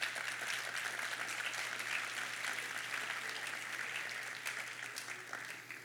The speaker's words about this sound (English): And if you think when, y si piensas cuando, you can give an applause there. Pueden dar ese aplauso.